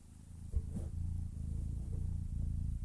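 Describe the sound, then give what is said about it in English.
A 10-week-old feral kitten named Lando, held up to the microphone, purrs steadily, a continuous low rumbling drone with a gentle pulsing rhythm, preceded by a brief bump of handling noise near the start. “And you may be hearing some background noise, and that's because there is a third Lord of Grantham right here.”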